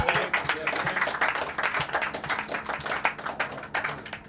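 A group claps steadily for a few seconds, dense overlapping handclaps forming a continuous burst of applause at fairly even loudness, with a faint murmur of voices beneath.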